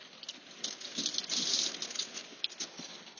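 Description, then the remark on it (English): Heavy rain mixed with hail patters hard and fast outdoors, a dense wash of tiny droplet taps with a few sharper hits, with no voices. “The rain is really coming down now.”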